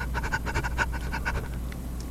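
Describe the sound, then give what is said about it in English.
Quick, rhythmic mouth breathing, a run of short breathy puffs in steady succession, fairly loud with a raspy edge, and no talking over it. “I'm trying to mouth breathe.”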